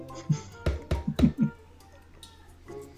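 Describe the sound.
Three quick, sharp knocks on a front door in a fast even rhythm, fairly loud, followed by a quiet stretch with faint background noise.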